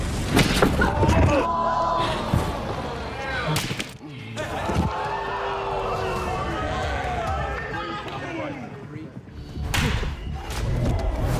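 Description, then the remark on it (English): Several sharp, cracking open-hand slaps from the slap-fighting competition show Power Slap Road to the Title land at uneven intervals amid loud, continuous crowd shouting and excited voices, with a couple of heavy smacks standing out above the roar. “So that insanity is from clips of a new show called Power Slap Road to the Title.”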